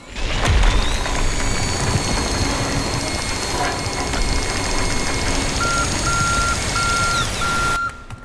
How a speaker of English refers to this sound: Oh no, what happened? The granite is too hard, sir. The super drill is not strong enough.